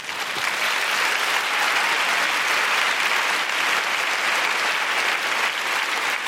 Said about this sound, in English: It's just been so amazing to have this army of women come together tonight at the Palladium. Can you please give yourselves a big round of applause?